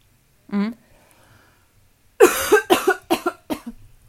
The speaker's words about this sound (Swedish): Vi bara inflika att jag dras med en sjukt jobbig hosta. Som ni kommer höra fler gånger här under avsnittet antagligen